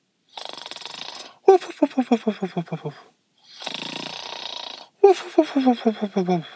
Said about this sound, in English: Dad, you're snoring.